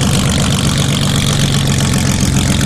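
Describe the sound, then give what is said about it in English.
A powerful airplane engine on a flat-bottom sea sled boat roars steadily and loudly as the boat speeds across Seattle waters, a dense, unbroken drone with a deep throbbing pulse underneath and a harsh, noisy edge across the whole sound. “These boats speed across the Seattle waters with deafening noise.”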